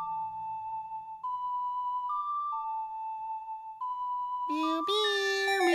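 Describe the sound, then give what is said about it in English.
Video game bells ring out in a slow run of sustained, steady tones that step up and down in pitch, then swell into a louder, richer cluster of chiming notes at the end. “And now the bells are ringing.”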